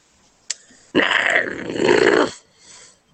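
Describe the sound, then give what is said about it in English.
A person voices a hungry animal's growl: one loud, rough, rumbling snarl lasting over a second, after a brief click, with quiet around it. “This is his hungry growl.”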